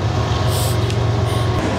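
A CSX freight train rumbles past in Pittsburgh, on tracks running right next to the rivers: a steady heavy low roar with faint high metallic squeals rising briefly over it, and no one speaking.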